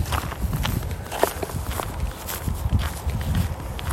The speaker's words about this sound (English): And I'm sorry if you can hear the snow crunching under my feet. I'm not sure if you can hear that or not.